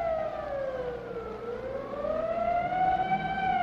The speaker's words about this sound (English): And at 1:32, as directed by the mayor, the siren sounds once more. Take cover.